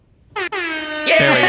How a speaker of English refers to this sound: Melinda deserves an air horn.